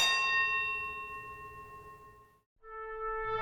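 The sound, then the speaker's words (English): A starter's bell rings loudly, a bright metallic tone that holds and slowly fades, then after a brief silence it rings again. No voices accompany it. It is the original starter's bell from the Meadow training track, which taught Secretariat and Riva Ridge to jump out of the starting gate. “This is the original starter's bell from the Meadow training track.”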